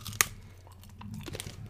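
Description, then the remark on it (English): A sharp crunch as a Nestle Crunch Bar, a chocolate bar with crisp rice, is bitten, followed by a few softer crunching chews over a low steady hum, with no talking. “Very crunchy. Mmm. Okay. I like it. Going in for another bite.”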